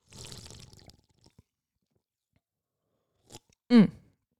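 Wet slurping of a cherry slush drink through a straw, followed by a pause, a couple of small clicks, and a short loud gulp with a satisfied throaty sound.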